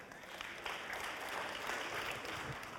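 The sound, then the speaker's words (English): An audience, asked to clap five times if there has been change or improvement after prayer, claps together, producing a dense, steady burst of applause that runs evenly for a few seconds without distinct separate beats. “if there's been change or improvement and you're the person praying or the person being prayed for, if there's been change or improvement, would you go ahead and clap 5 times?”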